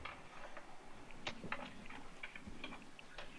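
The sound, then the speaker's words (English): A knife taps repeatedly against a cutting board while dicing an onion to add to eggs, a series of quick, crisp chops in an uneven rhythm, fairly quiet, with no talking. “I'm going to take the onion we've got here and go ahead and cut him up. Kind of dice him down a little bit.”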